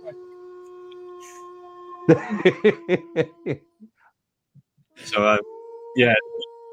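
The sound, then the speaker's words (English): A drawn-out wolf howl sound effect holds a steady tone throughout, while a run of chuckling bursts and later a couple of louder laughs break in over it. “Oh, the wolf howl apparently wants to just continue itself going forever.”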